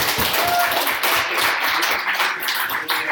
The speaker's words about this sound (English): So, thank you very much. Have a little round of applause.